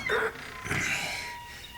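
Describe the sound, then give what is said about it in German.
A high, whining creak from the never-oiled hinges of a 1000-year-old portal door, two drawn-out squealing strains with a wavering pitch, the second one longer and fading into a thin, lingering tone. “Ach, Himmel, dieses Portal ist 1000 Jahre alt und die Angeln wurden noch nie geölt. Das klingt nun mal wie eingeklemmte Katzenschwänze.”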